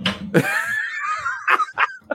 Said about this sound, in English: Can you guys hear that snoring? Shh, shh, shh. Everybody be quiet.